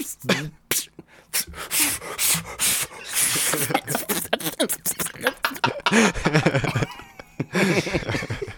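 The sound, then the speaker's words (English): Someone imitates blowing up a balloon with repeated breathy puffs and airy hissing bursts, broken by squeaky voiced noises and a bit of chuckling, fairly loud. “Your little do a blowing up a balloon impression.”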